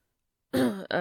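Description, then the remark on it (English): After a moment of silence, a man clears his throat: a gravelly, voiced rasp in two quick pushes, the second shorter than the first, fairly loud. “yeah, he says, clearing his throat as he gestures to the rusting and dented pickup truck he's been driving for the past year.”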